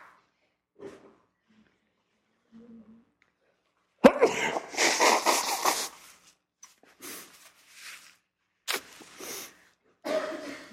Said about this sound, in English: I'm going to sneeze, but not into the microphone. Watch.